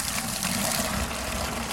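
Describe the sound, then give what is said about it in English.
Water rushes steadily out of a hose fed from a 300-gallon water tank on the back of a truck, watering a heat-scorched young replacement tree, in a continuous, loud gush, a constant hissing splash with no pauses and no voices. “then heads to the back of her truck, where she's got a 300-gallon water tank with a hose.”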